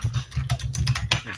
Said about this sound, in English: I'm going to finish typing it and then I'll wait to hit enter.